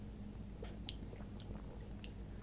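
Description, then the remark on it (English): Quiet sipping from a drink being tasted for the first time: a few soft slurps and wet mouth clicks spread over a couple of seconds against a low steady hum, with no talking. “So why don't we all take a sip?”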